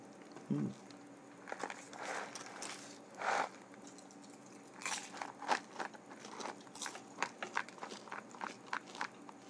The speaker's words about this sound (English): Cracker Jack, don't talk back. Crackety Yak. Crackety Jack, don't crunch back.